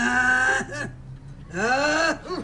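Two loud, deliberate-sounding coughs, voiced and throaty like an exaggerated "ahem," separated by a short pause, close to the listener with no talking.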